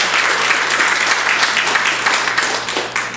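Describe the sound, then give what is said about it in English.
An audience in a church breaks into sustained, loud applause, dense overlapping claps continuing steadily for a few seconds without letting up, with no speech over it. “You can applaud that.”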